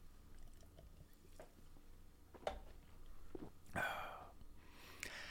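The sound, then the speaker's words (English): A few short, muffled burps break an otherwise quiet, hushed background, spaced irregularly about a second apart, the middle one fuller and longer than the others. No one speaks. “That's for our podcast listeners. The burping and the acid reflux.”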